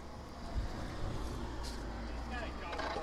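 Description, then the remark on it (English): A steady low rumble of road traffic fills the background, with a vehicle engine droning and slowly building as it draws nearer, over continuous outdoor noise. “And a car is coming.”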